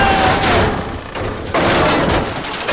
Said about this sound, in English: Oh, well, well, well, look who fell through the ceiling.